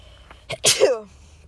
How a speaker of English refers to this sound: I need to sneeze.